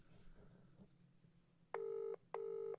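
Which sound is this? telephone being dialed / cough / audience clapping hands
telephone being dialed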